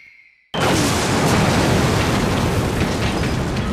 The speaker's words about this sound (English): That silence is broken at 7:15 a.m. when the Germans launch an artillery barrage heralding the start of the largest battle the world had ever seen.